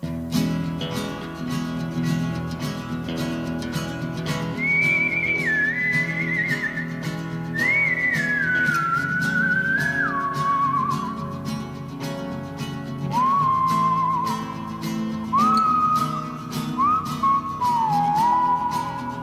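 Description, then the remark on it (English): A whistled theme tune on VPR radio, not the regular Vermont Edition theme music: sustained, gently sliding notes ride over a steady, full instrumental backing, entering a few seconds in and stepping gradually downward in pitch. “if you are a regular listener in this space, you might have noticed that this is not the regular Vermont Edition theme music that you usually hear at noon.”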